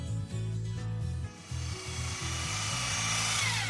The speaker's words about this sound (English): There's the power tools. He's using a drill or something.